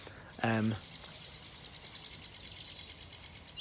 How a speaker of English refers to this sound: That was a woodpecker. I don't know. I don't know birds. Someone who actually is into birds might tell me that I'm wrong, but I'm like pretty sure that I just saw a woodpecker and it just made that noise.